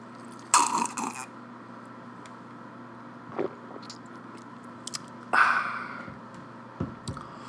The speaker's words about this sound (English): You guys like those fucking swallowing sounds, or does it make you think you're fucking like listening to the audio of a gay porn?